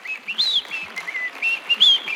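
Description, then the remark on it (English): Someone whistles a bright, wavering tune in short rising and falling phrases, moderately loud, with no talking over it. “Just whistling, happy that you're healed.”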